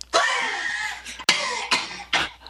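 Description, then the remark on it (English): A run of about four harsh, raspy, loud coughs from a person after laughing hard, the first one long and wheezy and the rest shorter bursts in quick succession, with no talking. “You know when you laugh so hard that you start coughing?”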